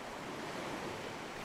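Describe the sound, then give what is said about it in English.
Sea surf washes steadily against the shore, a continuous broad roar of breaking water with no single distinct crash and no voices. “The sea crashes down, hard. The water runs up and chills Jenna's feet.”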